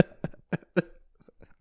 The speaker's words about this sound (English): All right, before I cough up a lung over here. Shout out. I'm so sick right now.